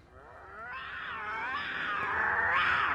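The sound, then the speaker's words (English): A young lion cub, Simba from The Lion King, lets out a thin, high-pitched roar, a strained, wavering cry that swells slightly louder over a few seconds, with no talking. “You hear Simba try and fight his way out of this situation with these three fun little laughing hyenas, and his little puny roar just makes him laugh even more.”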